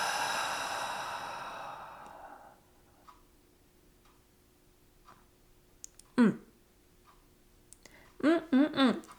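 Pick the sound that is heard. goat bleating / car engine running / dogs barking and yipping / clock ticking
clock ticking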